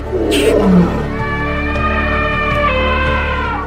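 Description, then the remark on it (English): A big cat lets out a loud, drawn-out roar, opening with a rough, breathy burst and settling into a steady, rumbling, harmonic growl that holds for several seconds. No one speaks. “We have 3 different big cat species now, so we're very lucky we have lions and cheetahs.”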